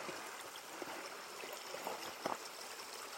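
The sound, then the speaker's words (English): A small creek in a National Forest babbles steadily over rocks as someone walks across it, a continuous watery rush with occasional brighter splashes and trickles rising above it, no voices present. “All right, we'll walk across the same creek again.”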